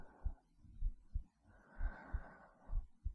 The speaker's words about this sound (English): Back to my heartbeat.